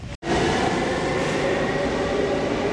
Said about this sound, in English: Letting the train pass right now. Letting the train pass. Okay, the train has passed.